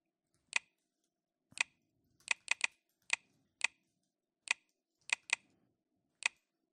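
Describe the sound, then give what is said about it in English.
Crisp keystrokes on a computer keyboard as an email password is typed, about eleven clicks tapped at an uneven, deliberate pace with short pauses between them, and no talking. “And here I'll put the email password.”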